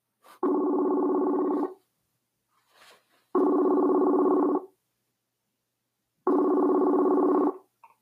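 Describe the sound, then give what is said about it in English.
A telephone ringback tone on an outgoing phone call that is connecting repeats three times, each buzzy ring lasting over a second with roughly two-second pauses between, steady and fairly loud with no one talking. “Says connecting. Oh, I hear a ring.”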